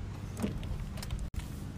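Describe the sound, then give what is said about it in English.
A car door is opened for a woman and someone climbs in, with rustling and mechanical clicks, then a brief cut to silence before more shuffling movement. “The sound of you opening the car door for your lady.”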